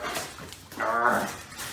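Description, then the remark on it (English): A puppy lets out a high, whining whimper that rises into a short, strained bark-like yelp, with quieter whiny noises before and after, as its owner tries to get something on it before a walk. “He's really puppy.”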